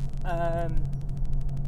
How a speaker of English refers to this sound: I'm kind of sick and tired of recording in the car. Ironically, I'm doing that now.